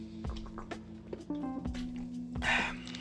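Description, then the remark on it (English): Quiet sounds of someone drinking water: a few soft sips and swallows with small wet clicks, spaced irregularly over a steady low electrical hum, with no one talking. “Gotta take a little water break here.”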